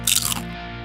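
A single sharp crunch of a potato chip being bitten, bright and crackly for a split second before fading into a low steady background hum.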